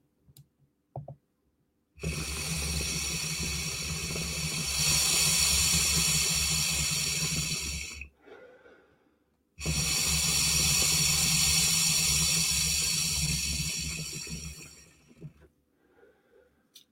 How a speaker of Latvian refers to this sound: Teikšu tā, vajadzīgi baigā plaušu, lai viņi, nu, palīdz uz leju, redzē, kā te ūdens viss burbuļo.